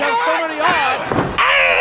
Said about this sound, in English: Because this is where we get our second grunt of the night. Oh, my second one! Yeah. …, the young prospect here now. That gigantic scissors kick he hits on Crush is accompanied with a big Godzilla-like...